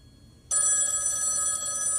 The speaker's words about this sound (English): Man, we're out of date. That sounds like an ancient phone.